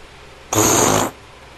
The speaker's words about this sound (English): Ooh. That was a real fart from him, too. He farted right on there. I heard it.